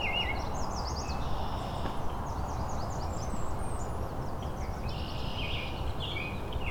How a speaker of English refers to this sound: Blackburnian warbler.